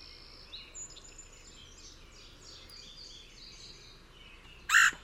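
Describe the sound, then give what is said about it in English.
A single loud, harsh quirr call of a red-headed woodpecker, its breeding-season call, bursts out near the end, following a stretch of faint chirping from other birds against a quiet outdoor background. “So that's what you'll hear in the warmer months. So spring and summer, you'll hear that. Same species, red-headed woodpecker, just has two different calls.”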